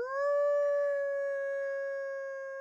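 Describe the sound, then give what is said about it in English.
A woman biologist imitates a wolf howl with her hands cupped around her mouth, outdoors on a cold Wisconsin night: one long, steady, clear tone held for a few seconds at a fairly loud level, with no other sounds around it. “She raises her face, cups her hands around her mouth, and howls.”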